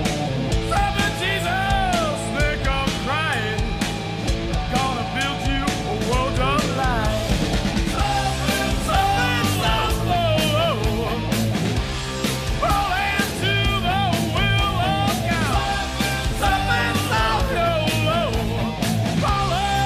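A heavy metal song plays at full volume, with dense distorted guitars, steady pounding drums and a wailing male lead vocal running continuously throughout.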